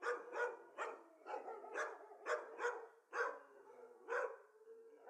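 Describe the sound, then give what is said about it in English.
A farm dog barks repeatedly in a steady, rapid series of about ten sharp barks, moderately loud, with no other voices. “This episode is dedicated to dogs, farm dogs. Dogs, dogs, dogs.”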